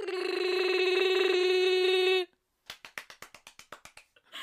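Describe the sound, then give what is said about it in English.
A voice imitates Chewbacca's growl with a loud, sustained, raspy howl lasting about two seconds, followed after a short pause by a quick run of sharp claps. “I can do a Chewbacca impression.”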